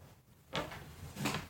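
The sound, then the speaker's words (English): A few wooden knocks and scrapes as the broken side of a chair, which broke when someone leaned back on it, is hit back into place, ending in a sharp tap. “Here, just hit that side in.”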